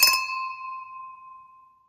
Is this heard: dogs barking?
no